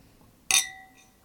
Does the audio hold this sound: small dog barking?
no